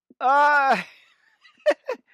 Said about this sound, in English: yawn number 5.